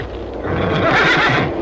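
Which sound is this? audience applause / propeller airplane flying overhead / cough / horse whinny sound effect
horse whinny sound effect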